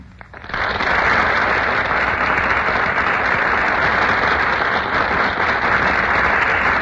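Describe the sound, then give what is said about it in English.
A sudden burst of studio audience applause for Madeline Carroll and Melvin Douglas making their entrance on the Gulf Theater stage swells up within half a second and holds steady and loud, a dense wash of many hands clapping with no voices. “Ladies and gentlemen, that burst of applause is for Madeline Carroll and Melvin Douglas, who have just made their entrance on our Gulf Theater stage.”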